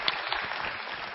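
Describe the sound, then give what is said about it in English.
A crowd at a church service applauds college students from the Harbor City College Ministry, a dense, steady patter of many hands clapping at once, fairly loud and continuous with no voices on top. “You guys can applaud.”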